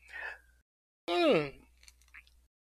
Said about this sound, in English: I had to take a sip on that one.